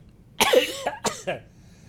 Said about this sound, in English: Sorry, this voice makes me cough.